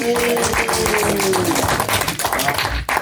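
An audience applauds with dense, steady clapping that holds at a strong level for about three seconds, while a faint sustained tone hums underneath during the first half.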